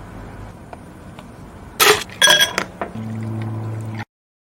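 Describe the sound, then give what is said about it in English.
Sharp clinks and cracks of ice against glass, followed by a steady pour of fizzy 7Up filling a glass, with no talking. “The sound of the ice cracking, the drink pouring into the glass.”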